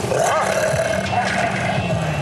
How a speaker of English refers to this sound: Oh, my God. They are mauling me! The pack of wild dogs are mauling me!